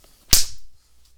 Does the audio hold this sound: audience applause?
no